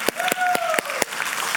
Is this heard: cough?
no